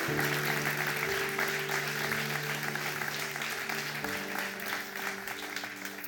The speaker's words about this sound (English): All right. Come on, church. Let's give them a big clap. Amen. Amen.